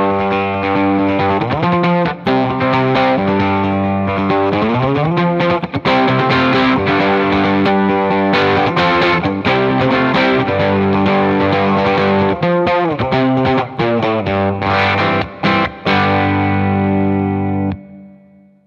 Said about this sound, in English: And that's, you can hear reverb from the reverb pedal, but otherwise any kind of overdrive or distortion is just this guitar driving the matchless JJ30 amp on about one. Yeah. We've got it pretty low.